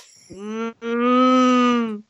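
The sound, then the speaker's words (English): A person imitates a cow with a long, low, droning moo, briefly broken after a short opening note, then held steady for over a second before cutting off. “That was just you trying to decide to do a cow while kind of doing a cow.”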